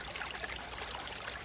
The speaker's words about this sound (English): We're right next to a beautiful little creek.